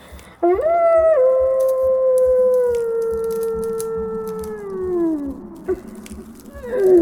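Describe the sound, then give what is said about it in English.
A person with a mask stuck on their face howls like a wolf in one long, sustained wail that rises, holds steady for several seconds, then slowly falls away, loud, followed by a brief second howl starting at the end. “I'm becoming a wolf.”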